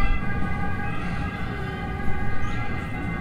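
ambulance siren passing by

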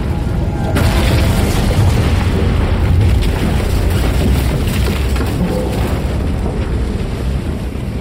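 roof crashing down

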